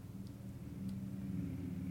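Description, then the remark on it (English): A steady low rumble of many cars on the road outside at night, muffled and continuous, with engine drone swelling slightly as vehicles pass. “Sorry, there's a lot of cars tonight.”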